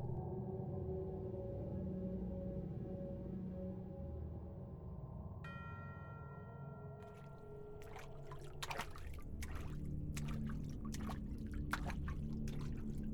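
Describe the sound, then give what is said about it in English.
Water from condensation on the upper pipes of a tunnel drips and trickles in a steady, uneven patter over a low, continuous rumble, with a faint tone ringing out midway before the drops grow busier toward the end. “We only pause to draw water from the condensation of the upper pipes”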